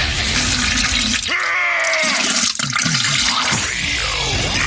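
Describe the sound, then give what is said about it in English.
A toilet flushes loudly, a rushing gurgle of water with rising tones as the bowl drains and the tank begins to refill, no voices present. “It's almost as enjoyable as hearing the sound of the toilet flush.”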